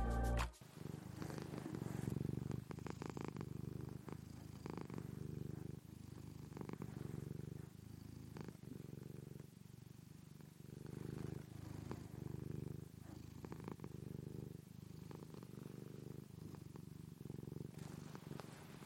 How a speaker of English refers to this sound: So as we go into an advert, please enjoy the gentle sounds of my cat's purr.